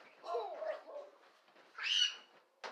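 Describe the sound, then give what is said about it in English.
A dog lets out a few short, yowling barks in two quick bursts, with a brief sharp sound at the very end and no one talking. “That's why doggy mean to you.”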